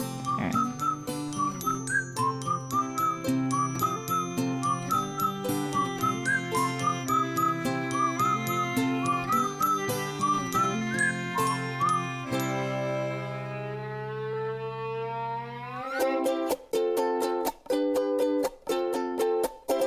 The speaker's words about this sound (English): It doesn't sound better when you sing along. I know. And I wish I could whistle, because I could whistle along with this.